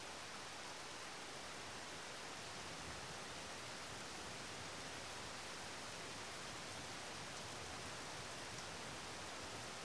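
gentle rain falling

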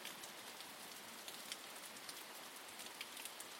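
rain falling

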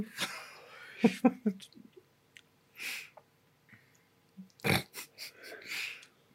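person yawning

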